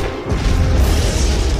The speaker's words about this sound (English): The Berenian explodes out of the smoke. Blaster cannon fire rips through the gunship.